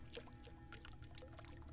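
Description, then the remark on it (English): Faint water dripping and trickling, with irregular splashy drops landing every few moments over a steady low background rumble. No voices. “Sloshing and dripping.”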